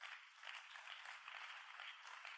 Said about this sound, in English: Your clapping is weak because you don't get it.